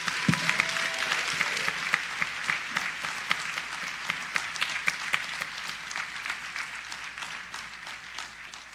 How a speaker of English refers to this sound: Can we please have one more round of applause for all of our scholarship recipients, as well as all of our graduates of St. Paul Baptist Church.